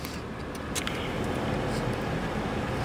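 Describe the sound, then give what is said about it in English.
A steady, dense roar of road and engine noise from inside a moving car, swelling slightly as it overtakes a tanker truck, with a few faint clicks early on and no talking. “Hold on, I gotta pass this tanker truck or I'll never get to Dubs.”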